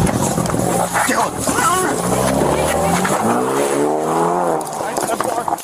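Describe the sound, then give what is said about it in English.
A car engine revs hard and accelerates as the car drives off dragging an officer, its pitch climbing steadily over several seconds, loud and strained, with agitated voices shouting over the noise. “He just got hit me with his car.”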